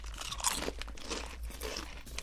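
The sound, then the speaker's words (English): Someone crunches Tato original cheese and onion potato chips, a quick run of crisp, crackly bites and chewing that rise and fall over two seconds, with no talking. “Let's get a chip cheers a here. Chip. Okay, this is the original okay, cheese here onion.”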